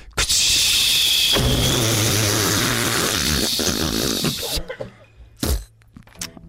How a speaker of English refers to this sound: Nope, still got more coming. Another fart. I think that must be the end of it.